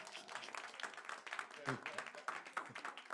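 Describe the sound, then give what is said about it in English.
A crowd of people clapping together for the Lord Jesus, a dense, steady patter of many hands that carries on throughout, with some voices mixed faintly into the applause. “Clap for the Lord Jesus.”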